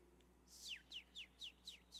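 A bird chirps six times in a quick, steady series of bright, downward-sweeping notes, clear against a quiet background, with no talking.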